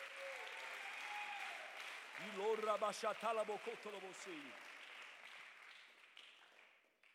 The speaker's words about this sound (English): Clap your hands unto the Lord. Give him praise.